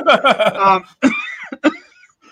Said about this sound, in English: now you say that I'm coughing. Oh, my God. My chest has been terrible.